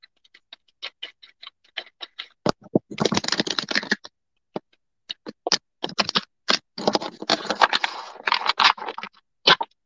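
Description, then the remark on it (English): A deck of cards is shuffled for a card reading: crisp clicking flicks and two longer riffling bursts, a dense flutter around three seconds and another toward the end, with no talking. “So I will shuffle for Jackie now.”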